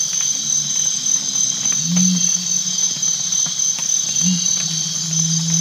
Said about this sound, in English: At my first stop along the trail, I hear some interesting night birds, crickets and cicadas